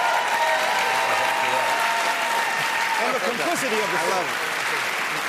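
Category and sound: crowd, audience cheering and applause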